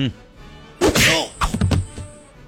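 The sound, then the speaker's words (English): A heavy punch sound effect lands with a sharp, close whack, followed about half a second later by a quick flurry of smaller thwacking hits, then fading quiet. “Punch a dummy Hayden in the face for always punching me.”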